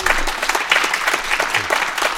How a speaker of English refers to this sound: Ladies and gentlemen, please, a round of applause for Ambassador Craig Allen.